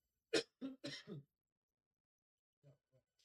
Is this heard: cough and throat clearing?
yes